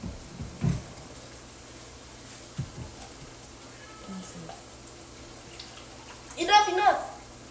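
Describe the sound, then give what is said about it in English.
Juice pours steadily into a tall cup with a soft, continuous splashing hiss, a few small clunks along the way, and a brief louder voice near the end. “Man, I'm pouring a whole tall cup of juice now.”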